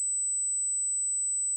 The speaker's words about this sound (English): So here's 8,000 hertz. Everybody should be able to hear this unless they've actually experienced some kind of actual hearing loss.